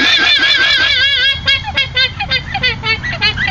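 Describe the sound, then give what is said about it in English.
A llama being sheared gives a long, wavering, nasal call, rough and honk-like, that breaks into a quick run of short, high squeaky bursts. “Yeah, they actually, the llama makes up for it at the end there with the little squeaky sound.”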